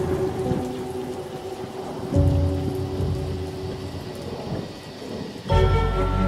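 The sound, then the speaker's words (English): Deep thunder rolls and rumbles over steady falling rain, swelling into heavier booms around two and five seconds in, loud with a dense wash of rainfall throughout. “Thunder and lightning, and what was horrible.”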